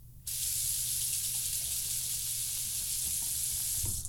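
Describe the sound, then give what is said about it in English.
A bathroom sink faucet turns on abruptly and water runs from the cold water side in a steady, loud, hissing stream for a few seconds, with no one talking. “Confirmed! It came out of the cold water side, hot.”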